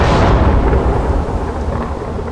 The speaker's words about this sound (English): The heavens resounded with thunder.